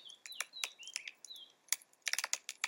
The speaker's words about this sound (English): He noticed the chirping of crickets filled the night, and so talking right now just didn't feel right. It's best we let them sing.